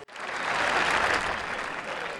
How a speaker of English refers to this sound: That's applause for the Bourbon Chronicles. It's applause for you.